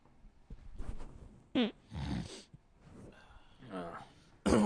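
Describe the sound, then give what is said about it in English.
A few harsh, close-up snorts and raspy throat-clearing bursts come in quick succession, loud and abrupt, with breathy vocal noises between them. “Inconvenient timing that I made a nose snorting, clearing my throat voice right as you ripped ass.”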